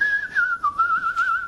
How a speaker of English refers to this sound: You probably don't know, but during the day... he just whistles. He just sits there enjoying his animal collection and whistling. In a kind of 1950s sort of way. Because no one whistles like that anymore.